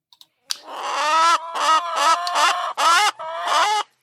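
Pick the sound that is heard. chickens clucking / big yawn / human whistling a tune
chickens clucking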